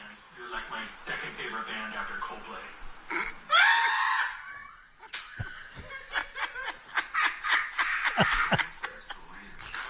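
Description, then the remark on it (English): A man watching a horror movie lets out one loud, high-pitched scream lasting about a second, surrounded by snickering, chuckling voices and breathy vocal noises before and after. “He screams like that.”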